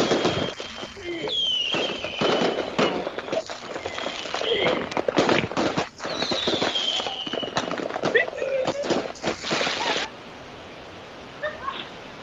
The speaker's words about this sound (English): Now the fireworks are going off again.